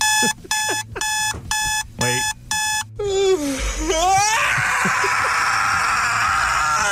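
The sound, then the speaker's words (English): An alarm clock beeps in five quick, loud bursts, then gives way to a bright, excited child's voice and cheerful squealing. “This is how we all should aim to wake up when the alarm goes off.”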